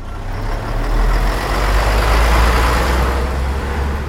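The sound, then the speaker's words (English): Heavy engines of a convoy of PMV trucks driving through the night rumble steadily with a deep low drone, a broad roar of road and motor noise that swells slightly. “So there's quite a few of these PMV trucks.”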